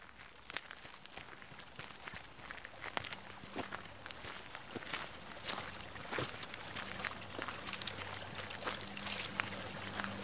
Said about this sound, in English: And here we are standing by the Serpentine Lake, and you can hear in the background the sound of water coming from an underground spring, one of many in this particular area, of course, limestone, and therefore full of these underground springs.